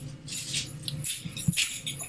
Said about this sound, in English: She's gathering her stuff. She's and then you can hear her keys jiggling here. This is the best part.